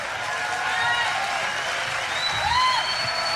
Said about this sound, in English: This is at Greg Locke's church, by the by. Look at this group of people absolutely losing it, clapping.